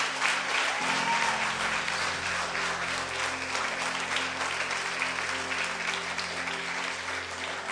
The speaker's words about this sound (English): Come on, keep clapping, church.